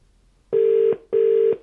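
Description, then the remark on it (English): Two steady electronic ringing tones from a telephone line as an interview call is placed, each lasting about half a second with a short gap between, clear with no voices. “Right, is that ringing? Is that picking it up?”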